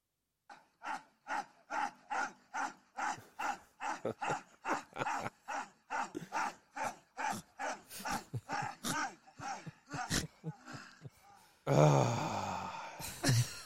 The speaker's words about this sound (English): Heavy breathing in the background. Any ideas what that is? Any ideas what that is? I know what it sounds like.